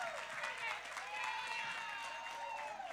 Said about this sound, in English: Let's just give God another hand clap of praise. He is good. He's worthy of the praise.